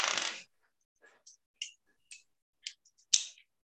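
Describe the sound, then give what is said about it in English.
Dice dropped by mistake fall onto a surface with a sharp clatter, then a series of light, irregular clicks and taps follows as the dice bounce and rattle to a stop, landing on 20, with no voices. “Just dropped my dice by mistake.”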